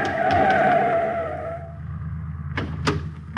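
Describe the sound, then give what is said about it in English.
A car's tires squeal loudly as it skids around a corner at a street-and-alley intersection in a city just after nightfall, the screech fading after a second and a half into low engine rumble, followed by a few sharp impacts. “He comes to the intersection of a street and alley just as a car turns the corner.”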